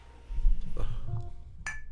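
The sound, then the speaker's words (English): Two mugs of hot cocoa clink together in a toast, a bright ringing tap near the end after some low handling thumps, moderately loud with no talking. “Hot cocoa. Cheers.”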